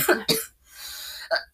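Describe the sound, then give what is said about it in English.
A few sharp coughs: a quick pair at the start, a breathy exhale in between, then one more cough near the end, with no talking. “Who are you coughing on?”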